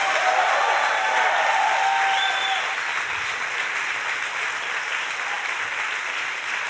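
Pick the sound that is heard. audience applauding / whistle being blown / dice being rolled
audience applauding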